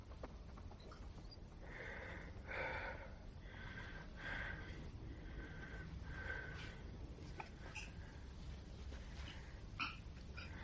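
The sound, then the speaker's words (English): A cat retching and vomiting: a rhythmic run of throaty, wet heaves, roughly one per second, fairly loud against a steady low rumble, with no one speaking. “And at this moment, my cat chooses to vomit.”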